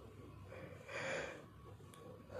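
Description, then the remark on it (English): A single drawn-out yawn, a breathy inhale rising and fading over about half a second, with no talking. “Yeah, I'm yawning, I'm sorry. I don't know why I'm yawning.”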